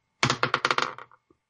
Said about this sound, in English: And also knock over my inhaler and hit a Coke can for emphasis.